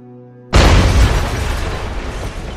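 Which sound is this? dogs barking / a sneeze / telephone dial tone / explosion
explosion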